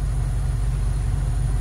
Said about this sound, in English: Oh, finally. The train has stopped. I mean, it's gone, and they're putting it up. Unbelievable.